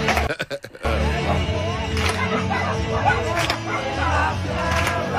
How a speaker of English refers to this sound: It's the dogs barking as well.